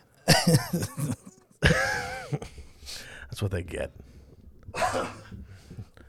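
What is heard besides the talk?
coughing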